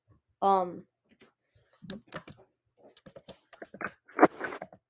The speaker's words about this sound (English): I'm just typing it so I don't forget who's in the lead.